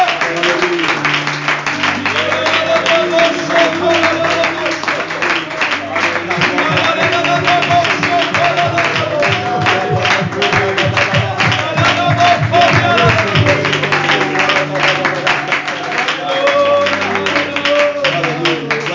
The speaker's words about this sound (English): One more time before you're seated, would you put your hands together in a great big glorious applause for Jesus.